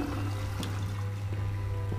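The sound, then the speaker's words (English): Steady rushing and gurgling water from a toilet flushing in a video game, the water level not changing, runs continuously over a low electrical hum at a moderate, even level, with a few faint clicks and no voices. “It flushes, but nothing like... The water level doesn't change, nothing happens.”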